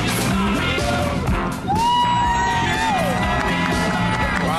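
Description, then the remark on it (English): A large crowd in Times Square, New York City, on a Tuesday cheers and whoops loudly and continuously, with sliding yells and shouts rising over a dense wall of voices, dipping briefly midway before surging back. “Look at the crowds in Times Square, New York City, on a Tuesday.”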